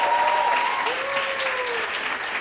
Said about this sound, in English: Yeah, clap it up for yourselves. You guys have been fantastic.